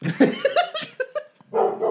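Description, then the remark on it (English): A dog barks and yips several times in quick, uneven bursts, fairly loud, with a brief pause before a final longer bark. “With sorry, my dog is barking, and you listen like a dog, it's my dog.”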